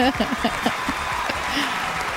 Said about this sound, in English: Where's the round of applause at?